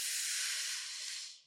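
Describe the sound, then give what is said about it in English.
One long, deep breath drawn in through the diaphragm, a steady airy hiss lasting about a second and a half before tapering off at the end, with no talking. “Like really deep breathing into your diaphragm. I'll model it here.”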